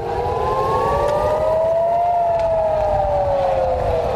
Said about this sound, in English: In Israel, air raid sirens are as familiar to children as the lunch bell.